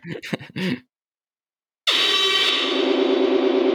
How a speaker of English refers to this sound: Hell yeah, that alarm is going off. That is a good sign.